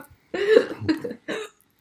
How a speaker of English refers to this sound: Excuse you. Excuse me, rookie. Sorry. Huh? Rookie move. What? Coughing? Hold it in. Choke on it. Not cough.